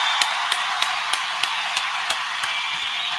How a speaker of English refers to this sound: Go ahead and keep the round of applause going for Premier Doctors.